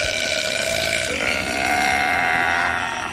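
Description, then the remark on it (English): A person imitates a long, loud burp that a woman made while moving her hands over him, a sustained guttural croak held for about three seconds at steady, full volume, with a slight shift in pitch partway through. “She would have burped over the next 20 minutes, because I'm sitting there starting to laugh, and she's got her eyes closed.”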